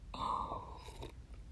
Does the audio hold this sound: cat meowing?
no